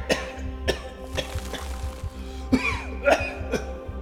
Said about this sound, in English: coughed and sputtered.